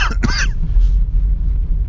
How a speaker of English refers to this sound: Oh, no! I coughed. Oh, it's got me.